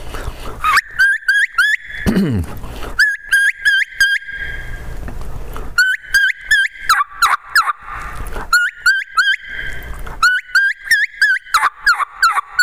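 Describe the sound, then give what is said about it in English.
A reed turkey call plays a light kee-kee run imitating hens: high, thin whistled notes rising into a quick string of raspy yelps, repeated in four loud phrases with short pauses between them and no talking. “But I do some light kiki running.”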